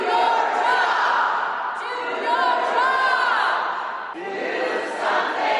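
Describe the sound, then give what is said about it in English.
At the Texas State Capitol, a large crowd of protesters shouts and chants "Do something" loudly and continuously, demanding action on a bill to raise the purchase age for AR-style rifles from 18 to 21. Many voices blend into a dense roar that rises and falls, briefly dips, then surges again. “Protesters shouting, "Do something," demanded action on a bill that raises the purchase age for AR-style rifles from 18 to 21.”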